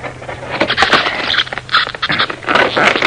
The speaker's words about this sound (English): I was so absorbed in forcing a slat off the crate that I didn't hear the footsteps behind me until it was almost too late.